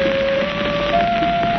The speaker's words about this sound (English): The bell suddenly sounds.